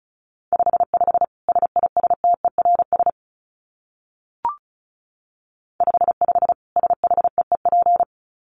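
Fast Morse code beeps at 35 wpm: a single steady mid-pitched tone keyed in rapid dots and dashes, sounding in two bursts separated by a pause with one brief click between them.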